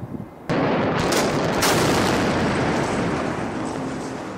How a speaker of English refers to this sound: Finally, on October 1st of that year, the old Kosciuszko Bridge was taken down in a spectacular controlled explosion.